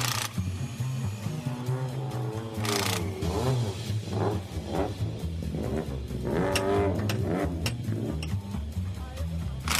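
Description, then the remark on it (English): A rally car engine revs hard again and again, its pitch surging up and falling back in repeated bursts, loud over a steady low rumble, on a small country road in North Cork, Ireland, ahead of a rally in the area. “We close off public roads to allow rally cars to race along them.”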